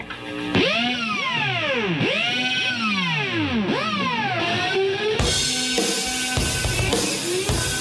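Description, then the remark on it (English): A loud, distorted electric guitar riff played with a power drill: whining pitch sweeps swoop up and down in repeating arcs, then break into a dense, roaring wall of noise. “he got the screwdriver, the electric screwdriver, and he did this”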